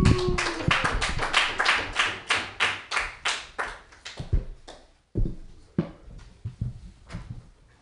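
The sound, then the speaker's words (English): Audience applause for a comedian being introduced, sharp, distinct claps in a fairly steady rhythm, loud at first and gradually thinning, with a brief pause before a few scattered claps trail off. No one speaks. “Make some noise”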